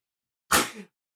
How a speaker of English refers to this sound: Oh, I hate sneezing. It's allergy season.